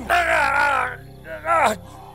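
A man lets out a long, strained groan of pain, wavering and harmonic, followed after a brief pause by a shorter, rising-then-falling cry. Two vocal outbursts, fairly loud, with no other sounds.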